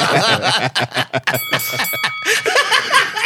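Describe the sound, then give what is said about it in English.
A bell rings with a clear, sustained metallic tone for about a second, partly buried under lively chatter and laughter from several people. “You know what that bell signifies.”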